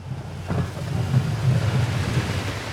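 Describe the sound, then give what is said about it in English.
A snowplow clears a road in Worcester early in the morning during the first major storm of the season: a steady, low engine drone under a broad, continuous scraping hiss that swells slightly midway, with no voices for about three seconds. “That's just one of the plows making the rounds early this morning in Worcester.”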